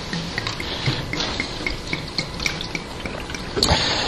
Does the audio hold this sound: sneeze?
no